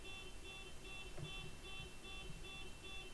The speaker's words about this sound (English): That's a car. Outside. And it is going off. Doot, doot, doot.